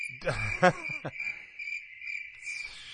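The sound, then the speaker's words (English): Crickets chirp in a steady, continuous high-pitched trill that runs throughout, with a brief muffled voice-like sound near the start. “Giant crickets.”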